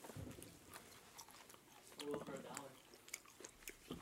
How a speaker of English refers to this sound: They could definitely hear me chewing the whole time. Probably.